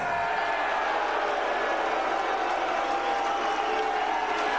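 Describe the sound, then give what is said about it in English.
A large crowd at a wrestling event boos loudly and continuously, a dense sustained roar of many voices filling the whole stretch with no individual speech standing out. “Why are you booing?”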